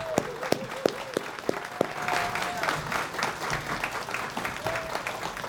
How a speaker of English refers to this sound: Can we give these kids a round of applause?